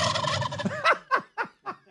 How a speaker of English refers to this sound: Residents are fearful of aggressive turkeys.